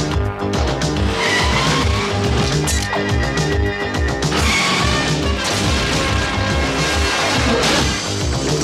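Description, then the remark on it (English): A police squad car from the show COPS screeches to a stop with loud skidding tires, joined by crashing impacts in a dense, continuous din that stays loud throughout. “We got, you know, the squad car is pulling up, and guess who's getting out of the squad car?”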